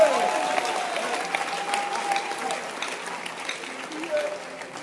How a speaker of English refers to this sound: Wow! Clap your hands for him!